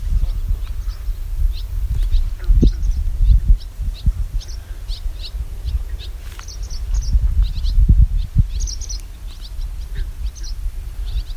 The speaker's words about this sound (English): And yeah, I just hear a lot of barn swallows.